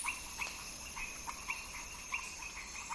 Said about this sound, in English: And the second category of species that you hear are the reptiles and amphibians.